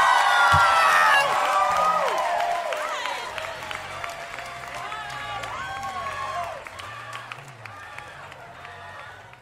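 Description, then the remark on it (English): A crowd at the Bell House applauds and cheers at the end of a show, with dense steady clapping, high whoops and shouted voices, loudest at the start and gradually tapering off over several seconds. “Give it up.”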